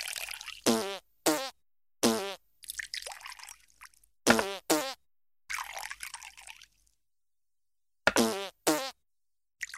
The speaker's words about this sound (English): Okay, you know what? Thinking about it, maybe I don't hate it. Maybe I like it. It's just the sound of his squeaky shoes and pouring sake for like 15 to 30 seconds.